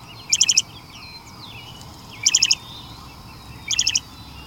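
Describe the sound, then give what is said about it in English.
A loggerhead shrike calls in three short bursts of rapid, buzzy repeated notes, spaced about a second and a half apart, clear over a faint outdoor hush. “It's a loggerhead shrike.”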